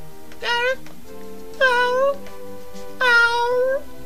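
A cat lets out three loud, drawn-out yelping cries, evenly spaced about a second apart, over a faint steady background hum.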